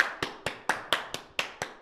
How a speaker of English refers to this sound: Round of applause. That's right.